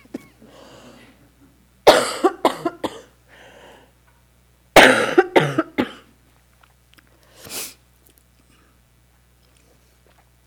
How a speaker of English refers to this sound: I went to the doctor today and she said, maybe I'm contagious. I do have a cough, but she didn't tell me I couldn't give the talk.